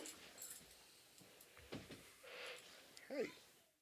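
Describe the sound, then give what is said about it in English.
A single short dog bark comes near the end, fairly faint, after a few seconds of quiet room noise and light rustling. “Henry the dog. That was scary.”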